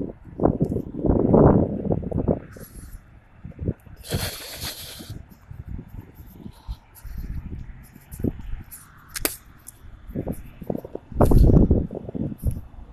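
wind blowing outdoors

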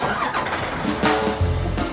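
bus engine starting

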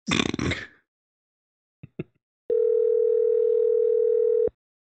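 telephone dial tone

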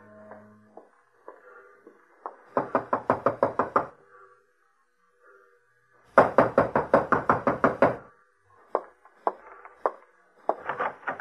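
knocking on a door

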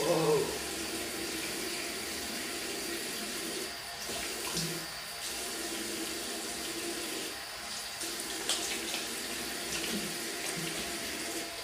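tap water running

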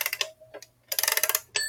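clock ticking

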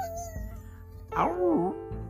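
dog howling

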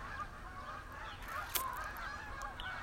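geese honking

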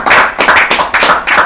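applause

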